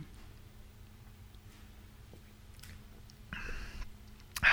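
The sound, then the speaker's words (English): A brief sip of beer after a toast, a short wet slurp after a quiet stretch with faint clicks and mouth noises, ending in a sharper, louder burst. “Let me go ahead and take a sip here.”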